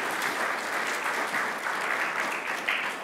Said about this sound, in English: Let's give our actors a warm round of applause.